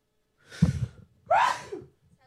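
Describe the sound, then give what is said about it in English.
A sharp, breathy inhale followed a moment later by a single loud sneeze with a voiced burst, then quiet. No talking. “That sneeze snuck up on me.”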